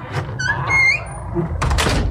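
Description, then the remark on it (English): A huge, heavy cellar door creaks open with a drawn-out, high-pitched squeal, then scrapes and thuds with rough, noisy knocks over a low rumbling background. “if you look down here, I got this huge fucking cellar door here.”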